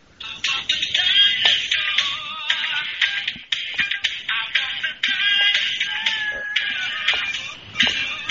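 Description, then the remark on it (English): A phone ringtone plays for about eight seconds: a tinny, thin tune of shifting high tones with a steady rhythmic pulse, loud and continuous with no one talking over it. “All right, here's my ringtone right now.”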